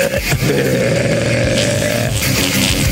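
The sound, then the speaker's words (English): A long, loud belch, drawn out for a couple of seconds with a rough, rattling low tone that wavers before trailing off. “What's your podcast about? Burps.”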